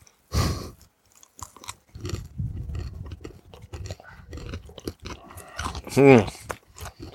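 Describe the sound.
Crunchy chewing of a potato chip snack, with crisp bursts of crackling and steady munching that repeats throughout, and brief voices murmuring alongside.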